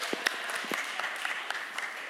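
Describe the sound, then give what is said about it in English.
Scattered applause from a small group after someone correctly guesses that a drawing is a snail: a steady patter of many quick, crisp claps over a continuous hiss, fairly soft, with a few sharper individual claps standing out. “Round of applause.”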